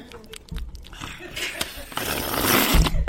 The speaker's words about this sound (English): Just drink a little bit of New York City's finest tap water here. That's good. Let me just take a refreshing sip here.